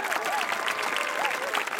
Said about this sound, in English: We're going to unveil the stamp. They unveiled the U.S. Postal Service's newest stamp. Did everyone ooh and ah and applaud? Yes. Oh, yes. It was quite a moment.